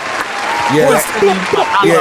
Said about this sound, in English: Clap it up one time for that.